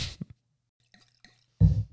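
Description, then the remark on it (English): Pinot red wine from a screw-top bottle splashes into a glass in short bursts: a quick gurgle and drip, a pause of near silence, then a fuller rush of pouring at the end. No one speaks. “So, all right, well, why don't you pour some glasses? Sure. It's a screw-off top this time.”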